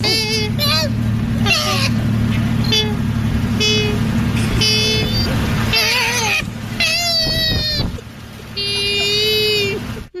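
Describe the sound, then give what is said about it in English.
Two koalas fighting, a run of harsh, squealing cries and rising, stacked wails in rapid bursts over a constant low rumbling drone, loud throughout with a brief lull near the end. “Two koalas fighting.”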